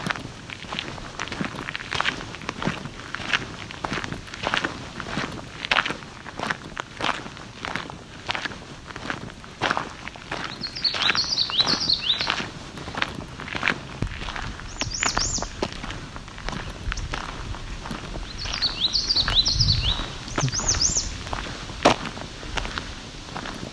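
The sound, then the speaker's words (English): High, thin warbler song phrases come in short bursts, a few seconds apart, over a steady crunch of footsteps on the trail. The birdsong is faint compared with the rhythmic walking. “And another warbler here.”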